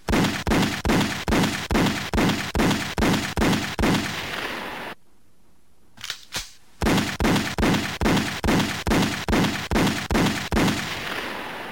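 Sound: series of gunshots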